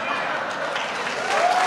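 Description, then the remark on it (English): A CIA audience applauds after the media are called dishonest, with steady, dense clapping that holds at an even level for under two seconds, swelling slightly toward the end, with faint crowd murmur mixed in. “It's insane to me that the CIA applauds another group being called dishonest.”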